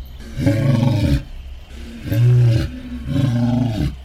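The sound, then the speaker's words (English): A lion roars three times in quick succession as a challenge to fight, each deep, rumbling call loud and separated by brief pauses, with no talking. “What's up with the lion? What's he doing? He's challenging the night wolves to fight him alone.”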